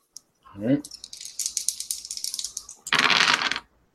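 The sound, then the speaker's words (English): Dice are rolled for grace rolls and clatter and tumble across a hard surface in a busy run of small clicks, ending in a louder, dense rattling burst. A brief voiced sound comes just before the rolling starts. “I need grace rolls from everybody again.”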